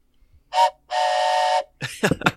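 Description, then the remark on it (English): A train whistle gives two steady blasts, a short one followed by a longer held one, and then a person starts speaking right after. “play that sweet, sweet train whistle and tell the audience how you're doing.”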